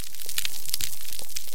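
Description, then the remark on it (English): A dense, steady crackle of snapping shrimp underwater on a tropical coral reef, countless sharp clicks fizzing together like frying fat, bright and hissy in tone, holding an even loudness throughout with no voices. “Put your head underwater anywhere in the tropics, any time of day, any time of year, you'll just hear this crackling sound, and that's the snapping shrimp.”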